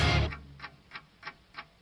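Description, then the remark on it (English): A clock ticks steadily in a track by a band, about five evenly spaced crisp ticks, following a brief burst of louder music-like sound at the start. Clear, with no talking. “Ooh, ooh, got a clock.”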